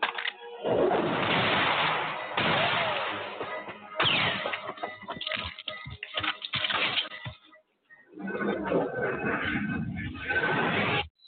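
A horse neighs loudly in a few rough, breathy bursts, separated by a stretch of sharp clattering knocks, with splashing, noisy rustle throughout.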